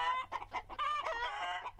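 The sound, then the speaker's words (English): Hens cluck in a quick run of short, throaty calls, then one drawn-out squawk, loud and clear with no voices around them. “Eventually, he met a woman feeding her hens.”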